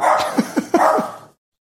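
A small dog lets out four quick, short yips in rapid succession indoors, moderately loud over a steady background hiss, with no one talking.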